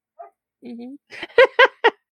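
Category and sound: animal, husky dog howling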